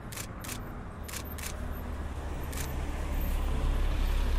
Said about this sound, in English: Oh, here comes the NASA tour bus. This is the money shot.